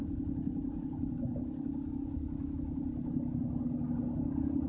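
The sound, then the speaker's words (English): A steady, low car engine drone hums continuously, with a constant rumble and no pauses, heard from inside a car driving across town in Houston. No one speaks. “Man, I drove all the way on the other side of town.”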